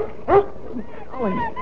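A dog named Tramp from Adventures of Lassie gives a sharp, rising yip, then a longer wavering whimper that bends up and down in pitch, both fairly loud over a low background hiss.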